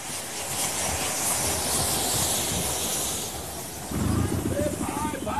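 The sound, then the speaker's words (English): A goods train rumbles past a station with a steady hiss of steam and heavy low clatter, growing louder and more rhythmic near the end, while a waiting crowd murmurs faintly underneath. “He takes a shortcut past the station and gets stuck in a huge crowd waiting for a goods train.”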